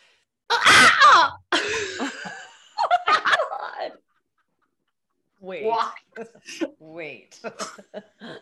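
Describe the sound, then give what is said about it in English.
A person imitates a bird's alarm call: harsh, raspy squawking bursts, then a pause, then a run of quick, sharp, chattering chirps and clucks of varying pitch, fairly loud throughout. “I don't want to give away my bird call before I do it.”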